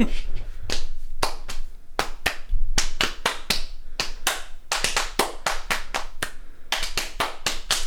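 A rhythmic football team hand-clap routine: a fast, patterned series of sharp, loud claps in clusters with brief pauses, lasting about eight seconds with no talking.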